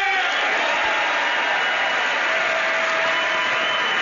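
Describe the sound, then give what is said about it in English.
A large audience of Republicans in Washington claps and cheers after Donald Trump says African-American unemployment is at its lowest recorded rate, a steady, dense roar of applause that holds at an even loudness for the full four seconds, with no one speaking over it. “Those cheers were not from the Democrats.”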